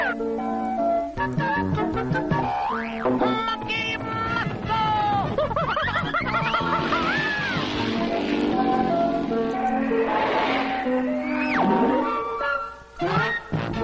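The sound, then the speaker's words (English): The theme song from the Donkey Kong Jr. cartoon plays, busy and loud throughout, with bouncy stacked tones, quick rhythmic changes and swooping, sliding pitches that sound almost like playful voices. “Now listen to the theme song from the Donkey Kong Jr.”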